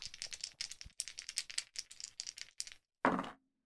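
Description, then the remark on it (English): Dice clatter and rattle in a quick burst of sharp clicks, tumbling unevenly for a few seconds before a brief pause and one final louder clatter as they settle, fairly loud; a roll plus Arcane in a tabletop role-playing game, landing on 4. “4 on the dice plus 2 is a 6, which is a miss.”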